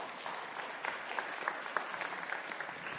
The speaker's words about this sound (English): Maybe give them a round of applause real quick.